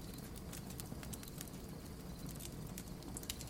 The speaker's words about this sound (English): Did you forget about my quirk already? I don't need stupid matches to start a fire. See? Watch.